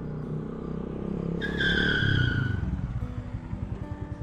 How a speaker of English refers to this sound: Behind the Minotaur, suddenly a screeching sound as Bruce pulls in on an enormous steam-powered motorcycle.